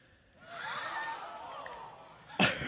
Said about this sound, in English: Crowd gasp sound. Royalty free, I hope.